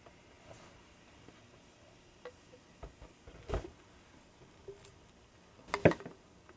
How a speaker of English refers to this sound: So I'll pour me a little bit here, and of course I like my lemon and Perola over ice.